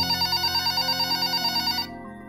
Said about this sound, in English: Sherry Wong was asleep in her hotel room when the phone rang.